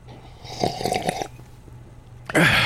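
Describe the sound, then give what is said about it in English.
A man's single rough, gurgling burp after taking a huge gulp of Orangina, lasting under a second and moderately loud, followed by a brief quiet pause before a sudden louder burst of noise cuts in at the end. “He burps and tucks into the ginger snaps.”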